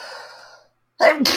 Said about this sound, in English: hang on, I'm going to sneeze here.